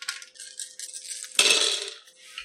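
A handful of 15 dice rattle and clatter, then tumble out onto a hard surface in a loud burst of clicking that quickly settles, rolled for a negotiations roll. No one speaks.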